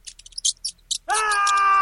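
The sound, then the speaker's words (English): A few short, scratchy high-pitched bursts, then a loud, drawn-out squeak like a mouse's, holding a steady pitch for most of a second. “It's just a harmless squeaky mouse.”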